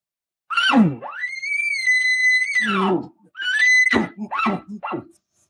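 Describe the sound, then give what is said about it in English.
A person imitates an elk bugle, a more demanding call with added emotion aimed at a cow elk: a low growl sweeping up into a long, sustained high whistle, then a shorter whistled call followed by a quick series of guttural chuckling grunts. “See, I did the same thing as that other bugle, but now I added more emotion into it.”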